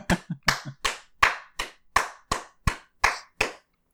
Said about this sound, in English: As you explain this plan, Leon stops and turns and looks at you. An asparagus spear in hand, like halfway bitten off, he just starts clapping.